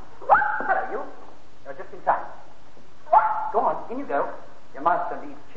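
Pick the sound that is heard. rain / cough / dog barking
dog barking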